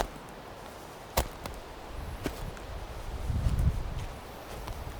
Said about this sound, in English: Not just with the water, but these sounds underneath my feet.